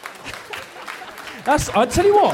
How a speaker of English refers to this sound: I'll accept the sentiment. I'm not going to accept the round of applause. I'll tell you what, I'll accept that. Because I'll tell you what, I've done comedy for about 15 years. That's the first time I've ever had an applause break.